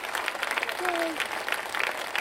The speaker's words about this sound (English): And it's our 5-year anniversary the next day. Oh, yeah. Chrissy and I have been married 5 years. Wow. There's applause for that.